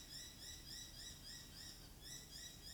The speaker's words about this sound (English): Can you hear the birds?